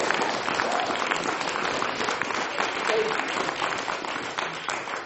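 Steady audience applause: many hands clapping in a dense, continuous wash at even loudness for about five seconds, with no voices standing out.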